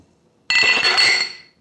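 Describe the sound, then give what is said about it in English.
A bright ringing clink of glasses of clear cola touching in a toast, a single impact with shimmering high overtones that fade out over about a second, with no voices. “All right, everyone. Cheers. Cheers.”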